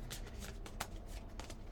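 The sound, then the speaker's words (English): A deck of affirmation cards being shuffled, a quick series of soft papery riffling bursts repeating over a couple of seconds, fairly quiet with no talking. “We're just gonna give a little shuffle.”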